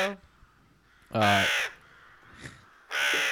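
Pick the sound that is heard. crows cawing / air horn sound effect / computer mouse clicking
crows cawing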